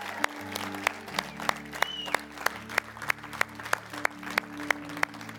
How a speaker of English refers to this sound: Hey, would you clap for the person in Montgomeryville? Let's let them hear us all the way in Phoenixville.